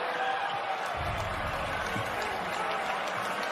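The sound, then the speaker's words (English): A large crowd of Toronto fans reacts on 2021 NBA draft night to the Raptors' fourth pick with a loud, sustained roar of mingled voices and scattered clapping, holding steady throughout the few seconds without any single voice standing out. “You heard the crowd. This is a surprise.”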